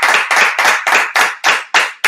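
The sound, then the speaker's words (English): A single pair of hands clapping in a quick, steady rhythm, about eight sharp, loud claps in two seconds, with no voices over it. “Come on, clap it up.”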